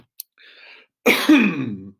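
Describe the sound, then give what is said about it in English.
A short, raspy cough bursts out after a brief breathy inhale, loud and slightly throaty with a rough, strained tail, alone with no talking. “a little cough.”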